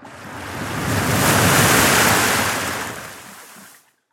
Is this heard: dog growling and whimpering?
no